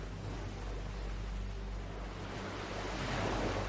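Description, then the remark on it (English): Steady wash of open sea around a small boat, a continuous rushing surf with low rumble and wind, swelling slightly louder toward the end, with no voices. “Look, we're on this boat together, with very little water, not much food.”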